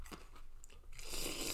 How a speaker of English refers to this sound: Wow, yeah, slurp that green grape, son. Oh, fuck that. Look how loud it is.